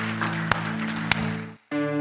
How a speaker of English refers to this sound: Can we give the Lord a hand clap, because he's good all the time, guys. Amen.